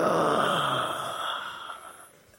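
A drawn-out, breathy yawning sound from several people at once in a church as they stretch with their hands up, loud at first, then sinking in pitch and trailing off into quiet over about two seconds.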